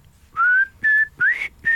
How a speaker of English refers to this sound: I was just going to say, you love a song with whistling in it. Yes, there aren't nearly enough.